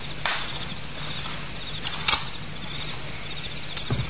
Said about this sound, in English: A garden gate shut softly, and footsteps, a man and a woman, fade away into the sounds of the night.